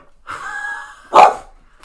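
A dog lets out a drawn-out, whining yowl followed by one sharp, loud bark, with no talking around it.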